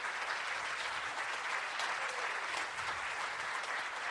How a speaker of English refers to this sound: But I'd like to ask for our graduates to all at this time to come forward and join me up on the stage. And as they make their way up, if you guys wouldn't mind just giving them a round of applause and congratulating them.